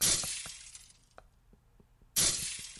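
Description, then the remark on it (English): Glass window shatters loudly in a bright burst, then scattered shards tinkle and clink as they fall, followed by a second loud crash of breaking glass near the end. “Slyde went in and out of the bank through glass windows”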